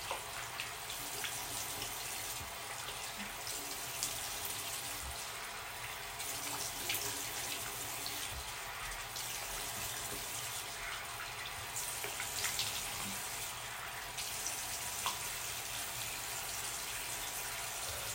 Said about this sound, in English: But anyways, let me wash my face real quick. Hold up. I'm gonna skip this part, because I'm not going to edit it, probably. Or you can just enjoy the sound of my water.